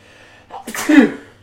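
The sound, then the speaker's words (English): A single sneeze: a short sharp intake followed by a loud, breathy burst that quickly fades, with a faint hum in the background. “Oh, sorry, I've just been sneezing.”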